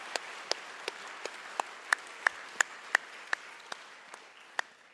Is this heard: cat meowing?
no